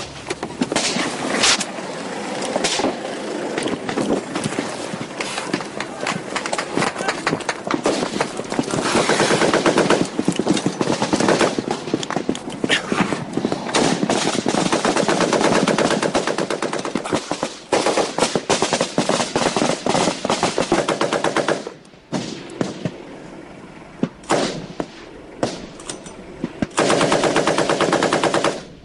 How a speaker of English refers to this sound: Driving along the ridge and came under fire.